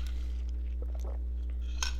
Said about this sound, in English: I'm just going to take a sip of my green tea lemonade with some sparkling water. It is so good.